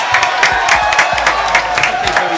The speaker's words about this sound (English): Let's clap it up one time.